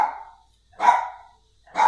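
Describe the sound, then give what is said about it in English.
A pet dog barks three times in the background in a steady rhythm, each bark sharp and fairly loud with a short tail, separated by brief pauses of silence. “The people on the podcast are just going to have to hear this, the dog barking in the background, because I feel like that's not going to stop anything.”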